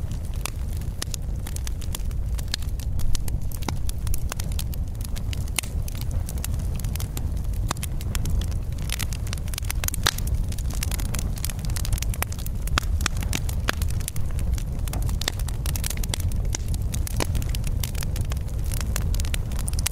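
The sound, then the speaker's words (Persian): A fire burns steadily, a constant low roar laced with dense, irregular crackles and sharp pops, with no voices present. “لطفاً یک دقیقه به صدای آتش گوش کنید.”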